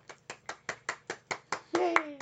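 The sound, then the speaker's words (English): An audience claps in steady unison, about eleven sharp, evenly spaced claps, before a voice breaks in with a loud cheer that slides downward in pitch. “I felt like my clap wasn't hurt, so I...”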